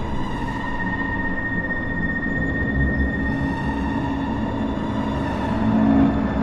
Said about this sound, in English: Ra's al Ghul entered the conductor's car on the train and started it up.